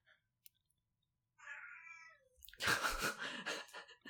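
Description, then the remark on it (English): A cat gives a thin, drawn-out mewl, then lets loose a louder, wailing meow that trails off plaintively, with a faint click before it. “The saddest cat.”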